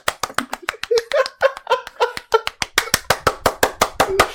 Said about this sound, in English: I don't deserve it. I'm clapping because I hated it. That was really good.